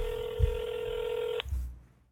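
A steady electronic phone tone as a call is placed, buzzy with harmonics, holds for about a second and a half, then cuts off abruptly. Low thumps sound before and after it, and no one speaks.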